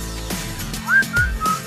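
A short whistled hook in a pop song: three sliding notes, the first rising into a bright held pitch, then two steady tones, played over a low musical backing without any voices.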